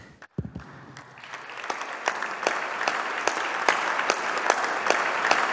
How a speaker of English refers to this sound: Ladies and gentlemen, take a few minutes, stand up, and give a round of applause to both of these gentlemen.